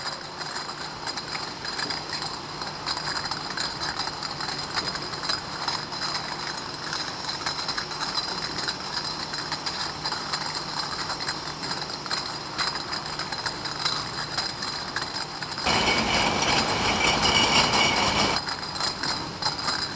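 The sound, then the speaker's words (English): Steady, dense mechanical clatter of machinery in a brewery's first-floor bottling plant, hundreds of empty bottles rattling down a conveyor belt, with constant glassy rattling and whirring, rising to a louder, harsher burst near the end before settling back. “Now we've moved down to the first floor bottling plant.”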